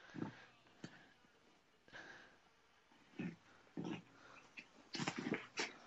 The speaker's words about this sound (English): Yeah, if you hear noise on my side, it's my dog rolling around making noise, messing in these blankets. Yeah, usually it's Harley barking because she wants to eat.